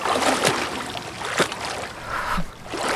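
Outside water, between 0 and 3 degrees Celsius, gushes and churns steadily as it vents out of a flooded, pressurized dive room, a loud, continuous rush with occasional splashy surges, with no voices over it.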